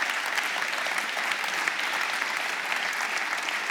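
Sustained applause from an audience as a couple is invited up on stage, a dense steady wash of many hands clapping at an even level for several seconds, with no voices standing out.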